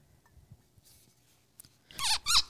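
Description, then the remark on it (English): A wooden-topped cork squeaks out of a scotch whisky bottle, two loud, wavering squeals in quick succession after a quiet stretch of faint handling noise. “Again, love the wood-topped cork.”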